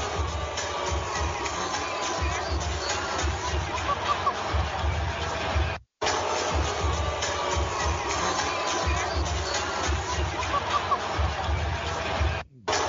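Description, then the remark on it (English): A large arena crowd in the stands boos Kawhi Leonard loudly and continuously over thumping music with heavy bass, the dense roar filling the space, broken by two brief cuts of silence. “That's some serious booing, too. That is some serious booing. Like, Joe, the music's cranking, and you can hear it.”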